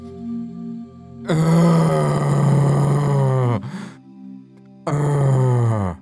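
labored heavy breathing

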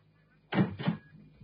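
door opening

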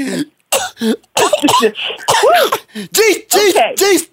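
coughing fit

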